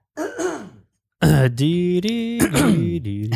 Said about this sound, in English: Now, let me just get this cough out of the way.